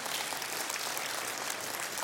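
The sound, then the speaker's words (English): A group claps steadily for about two seconds to honour five years of hosting a program, a dense, even crackle of many hands with no voices over it and no break in the sound. “Man, I think we need to clap for that.”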